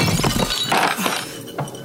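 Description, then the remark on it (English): An owl statue shatters in a sharp crash, followed by a scatter of brittle, tinkling fragments over less than two seconds, with no voices. “Just your dumb owl statue!”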